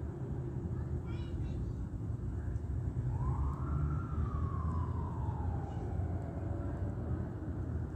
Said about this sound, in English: So while they drive by C Street, the intersection of 1st and C, right where I'm at, they bleep their sirens with the lights on the vehicle.